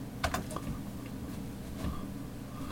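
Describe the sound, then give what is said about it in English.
A handful of soft, scattered keyboard clicks as someone types a few keys at a computer, typing a web address into a browser, over a steady low background hum with no voices. “you can start by opening up a browser and just typing in Taurus Report”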